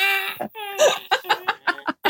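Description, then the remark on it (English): A wine cork squeaks against a corkscrew in a series of high, whining, almost cry-like squeals, first drawn out and then in short, rhythmic bursts, fairly loud. “I can't tell if it's a child crying or a cork being...”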